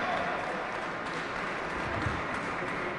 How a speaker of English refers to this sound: All right, give Joe a huge round of applause, Thank please.